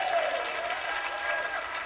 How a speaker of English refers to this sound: Nobody's clapping for us. We'll clap for ourselves. Come on, yeah.